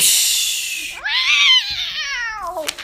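A single long, loud cat meow that rises and then slowly falls in pitch, alone, preceded by about a second of breathy, hissing noise.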